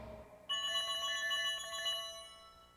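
A phone rings on an outgoing fan phone call with a bright, rapidly pulsing electronic trill that starts abruptly and holds steady for about two seconds, clear, with no one speaking.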